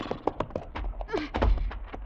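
Heavy, irregular hoof thuds clatter on the wooden planks of a rope-held bridge as a horse crosses it in the dark by moonlight, with a short whinny partway through.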